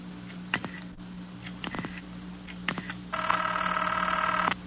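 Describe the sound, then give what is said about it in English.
An operator places a telephone call: a few short dialing clicks and tones on a telephone line, followed by a steady electronic line tone lasting over a second, with a faint hum underneath and no talking. “Could you find out if the phone is out of order? One moment, please.”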